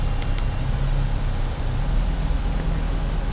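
A camera's autofocus motor whirs as a steady, low mechanical hum, broken by a few brief high-pitched chirps near the start and again later. No one speaks.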